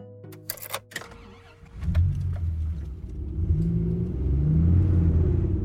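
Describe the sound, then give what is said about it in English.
A few sharp clicks and a door-like thunk, then a car engine turns over and settles into a steady low rumble that swells slightly as the car pulls away in Sheboygan, Wisconsin, heading towards Milwaukee along Route 43, with no talking. “We'll hop back into our car and make our way towards Milwaukee, Wisconsin, along Route 43.”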